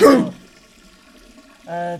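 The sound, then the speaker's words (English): A single loud, sharp sneeze bursts out at the start and fades fast, followed by quiet and then a short, tonal voiced sound near the end. “God bless you. Anyway, as I was saying, anyone try the Double Down from KFC? Hey, that better not be COVID.”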